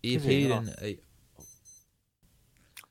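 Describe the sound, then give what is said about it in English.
After a brief stretch of someone talking, a small digital wristwatch alarm, accidentally set to beep at midnight, chirps a quick series of thin, high-pitched beeps, soft against otherwise quiet surroundings. “I set my watch to beep at midnight accidentally, and I don't know how to switch it off.”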